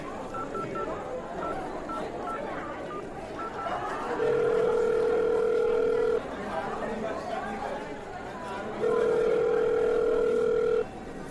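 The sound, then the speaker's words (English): A telephone dial tone sounds in two steady, two-second bursts separated by a pause, fairly loud, over a low murmur of background chatter, as someone places a call to their agent on a borrowed phone. “give me your shell phone. I'm calling my agent.”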